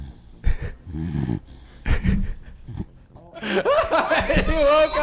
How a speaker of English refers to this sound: We're going to get a snore because he's a Jack Russell Terrier and he's a fucking sausage with four legs. There it is.